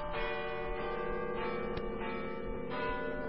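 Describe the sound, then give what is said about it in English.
Church bells peal continuously at midnight on Christmas, their overlapping tones blending into a dense, sustained wash of ringing with a few brighter strikes standing out, heard alone without any voices. “Listen, the bells. Midnight. It's Christmas.”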